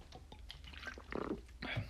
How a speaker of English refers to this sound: Let me drink some water.